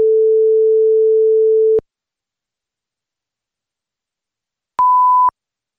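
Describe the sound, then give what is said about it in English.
A steady electronic tone holds for nearly two seconds, then silence, then a single brief, higher-pitched beep. These are radio time-check tones on The Line of Fire with Dr. Michael Brown: the long tone comes 10 seconds before the hour and the short one 5 seconds before. Both are clean and loud, with no voices. “We'll have a long tone at 10 seconds before, followed by a short one at 5 seconds.”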